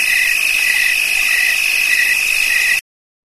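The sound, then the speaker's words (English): A crickets chirping sound effect is played back: a loud, steady chorus with a shrill high trill and regular pulsing beneath it, running unbroken for nearly three seconds before cutting off abruptly. No one speaks. “Put the crickets back on.”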